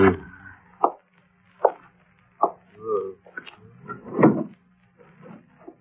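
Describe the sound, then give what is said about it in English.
The top right drawer of a wooden bureau being pulled open, with a series of knocks and clunks followed by a longer rattling slide and a final thud, heard mostly on its own. “Look in the top right drawer of the bureau.”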